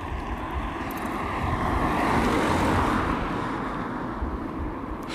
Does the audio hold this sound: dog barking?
no